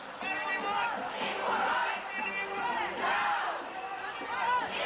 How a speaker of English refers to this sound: It culminated in crowds gathering outside Manchester City Hall